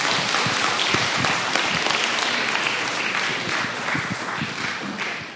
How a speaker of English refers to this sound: Hey, just so you know, sorry. Keep the applause going until the person takes the microphone.